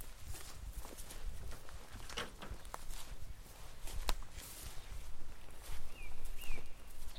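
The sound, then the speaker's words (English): Footsteps crunch and scuff over rough ground while walking across crop fields on a farm at a steady pace, with wind rumble underneath and a faint bird chirp near the end. “So I'm walking across some crop fields at the moment.”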